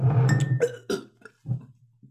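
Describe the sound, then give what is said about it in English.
A person chokes and splutters on a drink of spinach and lime cordial, with a rough, strained burst followed by several sharp, irregular coughs, then brief pauses between gasps. “That sounded like it went the wrong way.”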